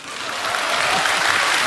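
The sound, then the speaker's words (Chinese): An audience breaks into applause, a dense, steady wash of many hands clapping that stays loud and even throughout, with no voices over it. “懂得掌声啊。”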